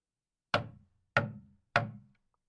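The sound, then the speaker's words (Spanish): A girl knocks three firm times on a door, evenly spaced, each with a solid wooden thud and a brief ringing decay, with silence between them and no voices. “Tocó a la puerta.”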